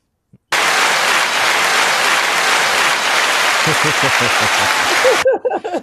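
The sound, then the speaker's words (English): A burst of crowd applause from a soundboard effect starts abruptly, holds steady and loud for about five seconds, then cuts off, with voices talking over its final moments. “Hit the claps.”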